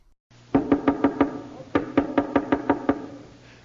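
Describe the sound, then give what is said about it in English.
A violinist raps his knuckles on the violin's wooden body to imitate someone knocking at a door, in two quick bursts, about five sharp knocks, a short pause, then about seven more. The knocks are hollow-sounding, with no voices. “First, there was the sound of someone knocking at the door, which was really a violinist just knocking on his violin.”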